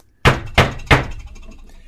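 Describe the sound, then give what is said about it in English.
Three firm knocks on a house door at night, in a quick, evenly spaced rhythm, each a sharp, loud thump with a brief fading ring, followed by quiet. “I was just about to turn my porch light off and go to bed when there was a knock at my door.”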